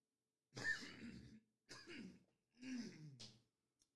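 Three rough, phlegmy bursts of a person clearing their throat, each about a second long with short pauses between, ending in a wet, gravelly cough-like rasp. No speech.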